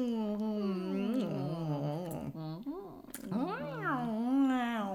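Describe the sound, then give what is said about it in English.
A human voice imitates cat meows, making a continuous series of fairly loud sliding mews and whines that rise and fall in pitch, with brief breaths between them. “Yeah, cat noises.”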